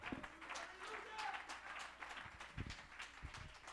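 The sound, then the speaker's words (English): A church audience claps their hands to give the Lord praise, a dense, steady patter of many hands with some sharper, louder claps standing out. Voices call out underneath throughout. “Oh, somebody clap your hands and give the Lord some praise.”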